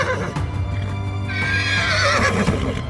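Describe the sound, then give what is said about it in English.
Two carriage horses, Arca and Killian, whinnying loudly and rearing up, startled by a large tree crashing down in fog; a shrill, wavering neigh rises over a steady low rumble, with hoof clatter mixed in. “Arca and Killian both whinnied and raised up.”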